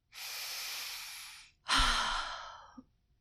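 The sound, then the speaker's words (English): A slow, deep breath drawn in through the mouth, followed by a long audible exhale with a soft sigh, clear with no talking. “If you are feeling nervous or stressed, a simple thing can help: a deep breath.”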